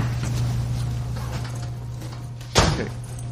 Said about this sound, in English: So there's a little blonde curly haired boy and his bald dad just walked into the room and just slammed the door.